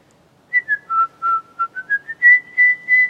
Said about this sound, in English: You hear the whistling just now? Yeah, it's usually not a good sign.